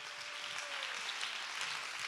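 A standing crowd claps its hands to give God praise in a steady, dense wash of applause, fairly loud and continuous, with no voices standing out.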